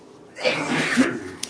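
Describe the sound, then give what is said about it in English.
A single sneeze bursts out, a sharp breathy blast that fades quickly, followed by a faint click. “Bless you.”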